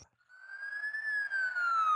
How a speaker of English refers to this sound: Next thing I remember is waking up to the sound of sirens. Firefighter picked me up.